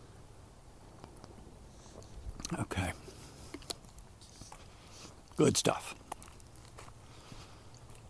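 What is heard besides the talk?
sipping water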